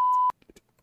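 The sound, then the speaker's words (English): A steady, loud electronic censor beep at a single pitch lasts about a third of a second and cuts off abruptly, followed by faint, brief fragments of speech. “sorry, you didn't see that because of the beep.”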